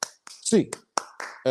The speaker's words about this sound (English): get your hands up, Bruins fans. Eight clap time, baby. And 1, 2, 3, 4, 5, 6, 7, 8.